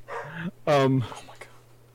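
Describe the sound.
Two quick bark-like yelps, the second louder and longer, sound like a person's voice imitating a dog barking, with a faint steady hum underneath.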